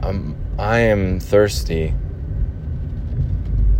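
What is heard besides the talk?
car driving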